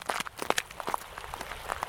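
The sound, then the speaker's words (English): Footsteps of walkers crunching on melted and refrozen snow on the Heatherwood Trail in Boulder on a cold, gray, cloudy day: a quick irregular series of sharp, gritty crackles from more than one walker, moderately loud with a steady faint hiss underneath and no talking. “Right now there's a lot of melted and refrozen snow on the trail, so we're making a lot of crunchy noise as we walk.”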